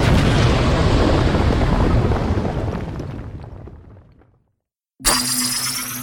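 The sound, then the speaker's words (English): A big, roaring explosion effect following a countdown, whose rumbling debris decays over about four seconds into silence, then a bright, steady tonal sound cuts in abruptly. “There was supposed to be an earth-shattering kaboom.”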